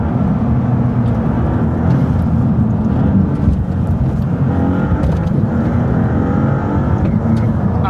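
A fast turbocharged car engine drones loudly and steadily from inside the cabin, rising in pitch as it accelerates, with a faint turbo whistle layered over the deep, grunty rumble.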